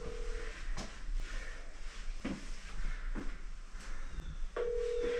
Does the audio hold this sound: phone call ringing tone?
yes